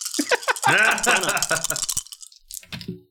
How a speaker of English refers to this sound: Roll your goddamn dice. Here I go.